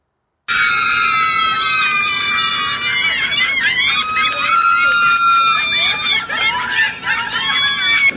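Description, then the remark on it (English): A crowd at a gender reveal party screams and cheers loudly and continuously, many high-pitched overlapping shrieks and whoops rising and falling together after a brief moment of silence at the start. “These are people reacting to a fucking gender reveal party.”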